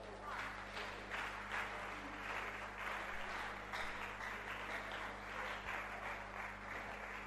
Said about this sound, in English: All right. You don't have to clap. I mean, I've finished preaching. I don't need clapping to assure me that I've preached a good message.